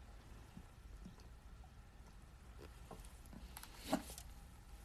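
Soft fizzing and trickling as Pepsi is poured and sipped at 9 o'clock in the morning, with scattered small clicks and one brief, louder slurp-like burst near the end; no one speaks.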